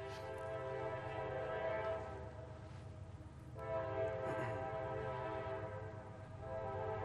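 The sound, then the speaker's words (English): Sustained horns from two trains blare in overlapping, steady chords for several seconds on a windy morning, swelling slightly partway through, with a low rumbling rail noise underneath and no voices. “We've got trains doing a duet in the back.”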